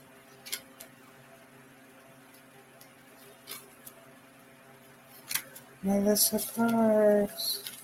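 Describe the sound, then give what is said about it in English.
Cards being shuffled through a stack to pick one card for a person: soft, scattered papery flicks and ticks, quiet, with a brief murmur of voice near the end. “I'm just shifting through the cards.”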